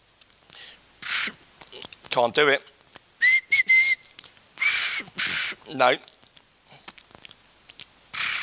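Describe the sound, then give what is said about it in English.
Someone whistles, trying a wobbling, trilling whistle made by vibrating the bottom lip to mimic the warbling ring of a trim phone, with a steady tone between attempts and short bursts of speech. “But anyway, you could whistle and do your bottom lip at the same time. And it made a noise like a trim phone.”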